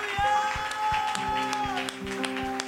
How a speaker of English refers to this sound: Come on, can you give God a shout of praise? Yes!